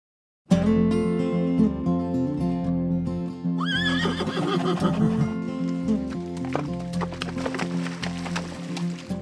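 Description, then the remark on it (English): A horse whinnies loudly, its cry rising and wavering, while hooves clip-clop beneath it with a steady, uneven clatter. “Horses are majestic, and riding them is fun, especially on trails you've never been on before.”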